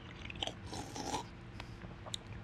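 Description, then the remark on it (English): Someone tasting a drink slurps it right up against the microphone, a wet, noisy sip followed by a few smaller lip smacks and mouth clicks, with no talking. “You're not drinking into the microphone. Oh, sorry, let me just re-slurp.”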